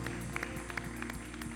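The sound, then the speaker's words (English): An audience claps along in praise of God in a steady rhythm, sharp scattered hand claps over a sustained low musical tone, fairly loud throughout with no one speaking. “Give God one more hand clap of praise today.”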